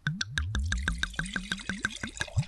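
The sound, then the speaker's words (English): Wine glugs out of a frosted-glass bottle of 19 Crimes into a glass in a quick, steady run of hollow gulping pulses, fairly loud, with no one talking. “Yeah, that poured like a crime. This bottle is a crime.”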